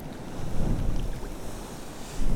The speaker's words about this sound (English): The sets come through in threes, it seems. So three big waves in quick succession, churning up the sea. And then it kind of calms down again.